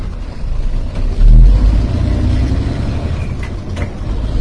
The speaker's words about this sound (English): Of raw in one sense of the word, of me with the trucker in his truck driving into Wells, Nevada.